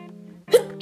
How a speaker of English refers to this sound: Wait, guys, I'm gonna sneeze.